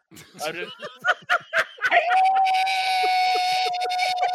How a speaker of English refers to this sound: And to try to cover, as the trip begins, instead of being graceful, Agatha is just going to let out a blood-curdling shriek.